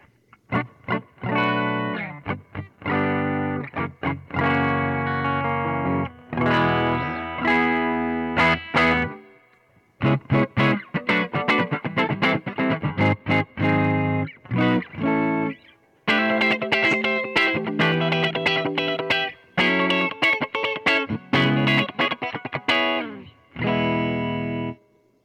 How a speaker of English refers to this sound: I'll run through the pickups, get an idea on our clean tone